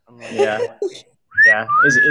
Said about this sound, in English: I just kind of whistle at him.